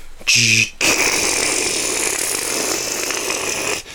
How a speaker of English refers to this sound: Who the fuck's opening the garage? We are.